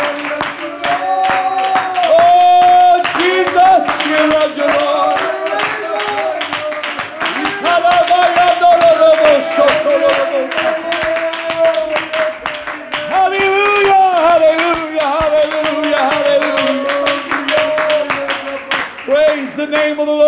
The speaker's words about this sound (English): Before you're seated, why don't you clap your hands and worship the Lord tonight? Hallelujah.